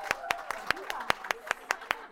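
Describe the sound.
Applause in a steady, even rhythm, about a dozen sharp claps in quick succession, with a faint voice murmuring underneath.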